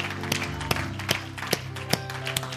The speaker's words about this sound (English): Give him a hand clap today. What a great God. What a great God.